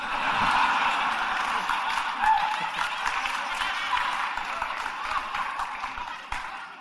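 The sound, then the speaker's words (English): A crowd claps and cheers continuously, a dense, steady wash of applause that fills the whole stretch and eases slightly near the end. No clear individual voices stand out. “I love all the cheering for that.”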